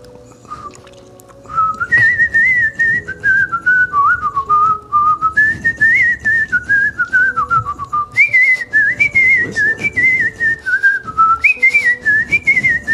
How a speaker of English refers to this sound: the end of that was wonderful. Something better? No, that was perfect. Unless you want to keep whistling, of course.